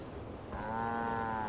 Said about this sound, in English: Cows agree with me.